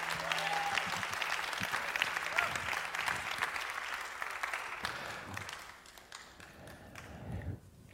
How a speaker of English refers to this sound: Can you please stand to your feet? If you're going to give a hand clap to God, it's got to be real. If you're going to thank the Lord, don't half thank God. Either thank him all the way.